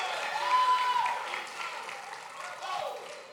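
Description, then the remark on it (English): An audience claps their hands in praise to God in a dense, steady wash of applause that holds at an even, fairly loud level throughout, with a few voices mixed into the noise. “Clap your hands one more time and give God the highest praise.”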